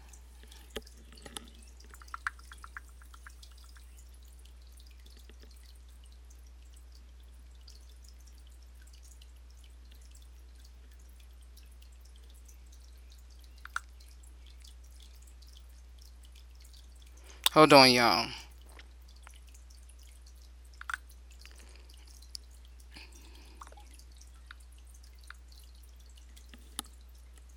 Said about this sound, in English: And while I'm trying to get him back on air, y'all, that water y'all hear in the background, that is this fish tank beside me. And I hate how the tank so quickly evaporates water.